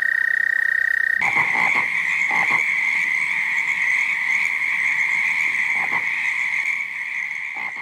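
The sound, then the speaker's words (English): A dense chorus of toads trilling continuously at a pond, a steady high-pitched drone layered with overlapping calls and occasional louder croaks, loud and unbroken throughout. “we would see the toads just everywhere, and they weren't always calling by that point”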